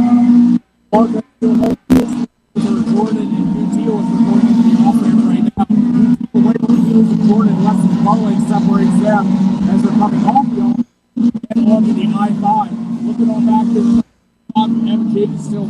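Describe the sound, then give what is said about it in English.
Fourteen race cars on a track roar loudly in a steady, droning wall of engine sound, broken by a few abrupt moments of silence before the engine noise returns at full strength. “We've got 14 cars on the track.”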